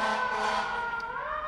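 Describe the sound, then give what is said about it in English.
A fire truck siren wails steadily, its strong tonal bands holding a sustained, slightly rising pitch across the whole moment, loud and alone with no voices. “The fire department's coming to steal some.”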